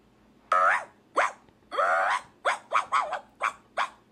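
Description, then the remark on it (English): A person imitates a chihuahua with about eight sharp, high-pitched yapping barks in a quick, uneven burst, loud with no other sounds around them. “They said, "That's my chihuahua bark. I ate that."”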